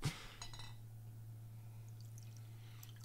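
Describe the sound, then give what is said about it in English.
A mango hibiscus drink is poured into a glass: a brief clink, then a short splashy gush of liquid that quickly fades, leaving a steady low hum and a few faint drips. “The pouring noises.”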